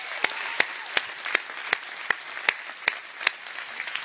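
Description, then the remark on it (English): A church audience applauds for all the moms, a steady wash of many hands clapping, with sharp synchronized claps landing in an even rhythm roughly three times per second throughout. No voices are heard. “Would you clap your hands again for all the moms?”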